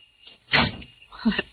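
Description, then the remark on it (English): A door is eased shut without a slam as someone comes in, making two soft, muffled knocks of wood and latch about a second apart. “You didn't slam the door when you came in that time.”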